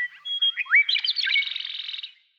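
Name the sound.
bird song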